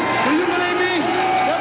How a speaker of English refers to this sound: I can't hear what he's saying with the crowd yelling.